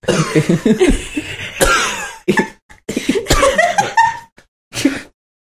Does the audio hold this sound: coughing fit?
yes